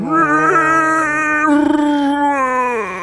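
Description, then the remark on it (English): A voice imitates a Wookiee's moaning roar: one loud, sustained howl lasting about three seconds, wavering in pitch, turning rough and gravelly midway before tapering off. “This time, it's a Wookiee. Oh, boy. And it does a moan, roar.”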